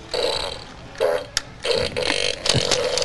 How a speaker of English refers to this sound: Is this one named something different? It's the fart and laugh blaster.